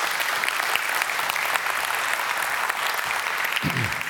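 A crowd of people clapping together to give the Lord a clap, a steady dense wash of applause lasting throughout, with a brief low voice sound near the end.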